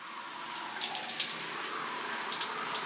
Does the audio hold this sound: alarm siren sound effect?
no